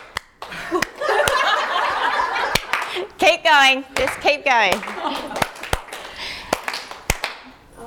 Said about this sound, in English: Okay. Clap, tap, tap, clap, slap, slap, stamp, clap, clap. And one. That's it, now you got it. And one. And one. Tap, tap, tap. Slap, slap, stamp, clap.